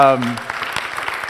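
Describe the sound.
An audience breaks into steady, dense applause in a church sanctuary on being back there together, right after a brief spoken voice at the start; the clapping is sustained through the end.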